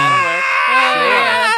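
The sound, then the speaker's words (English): A T-Rex roar sound effect from Jurassic Park: a loud, shrill, trumpeting bellow lasting about a second and a half, its pitch wavering and bending up and down, heard on its own without talk. “I need a T-Rex roar from Jurassic Park.”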